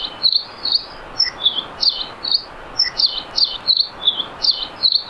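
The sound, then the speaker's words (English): A Nihoa finch sings a lively, canary-like song of bright, rapid chirps and trills repeating steadily and loudly over a soft hiss of background noise, with no voices. “If you're lucky enough to ever visit Nihoa Island, you can't miss their lively, canary-like song.”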